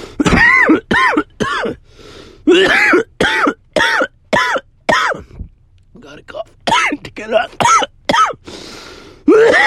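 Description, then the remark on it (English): A long, loud fit of harsh, raspy coughing from someone smoking a joint, dozens of quick bursts in uneven clusters with brief pauses, mixed with gravelly throat clearing. “Gotta cough to get off.”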